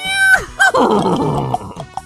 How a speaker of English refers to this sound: Let's race away on this horse!